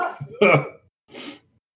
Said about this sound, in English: Oh. The hell was that? Just have an asthma attack? That's my sneeze, sir.